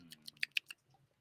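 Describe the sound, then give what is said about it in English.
Someone sipping water to clean their palate during a drink tasting: a quick series of about five soft, wet mouth clicks and gulps, fading into quiet at the end, with no talking. “I got to drink some water and clean out my palate here.”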